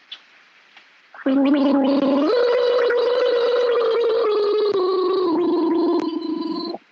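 Someone gargles a large mouthful of water: a loud, continuous bubbling throat tone lasting about five seconds, its pitch stepping up partway through before it abruptly stops.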